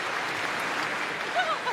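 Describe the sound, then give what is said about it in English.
A crowd gives another round of applause welcoming guests from The Acolyte, clapping in a dense, steady round, with a few brief whoops or whistles rising out of it near the end. “Everybody, can we please get one more round of applause?”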